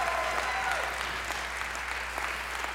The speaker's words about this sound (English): Give Him a hand clap. Give Him a worship. Give Him a praise.